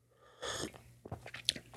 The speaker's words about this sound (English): Take a sip of my tea here. Throat's getting a little dry.